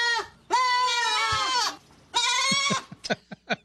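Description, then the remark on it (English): Two long, wavering goat bleats ring out loud, followed by a few short, choppy bleats or grunts at the end. No one speaks. “Hey, I hope you haven't been worrying about the floods up in Sacramento because goats are here to save the day.”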